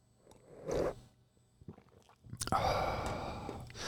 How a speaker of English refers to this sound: I need a sip of my coffee here. Just give me a second.